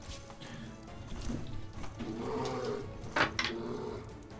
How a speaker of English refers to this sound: All right, so I get to roll a little bucket of dice. Sneak attacks for days.